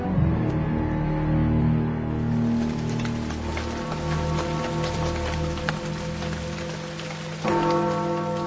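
Steady rain falls and patters on a surface at 10 o'clock at night, a continuous dense hiss with scattered drops and a low tonal hum underneath, no voices.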